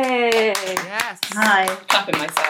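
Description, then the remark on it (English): A burst of hand clapping as two co-founders are welcomed on stage and clap for themselves: a series of sharp irregular claps mixed with cheerful whooping and voices calling out over them. “Clapping myself.”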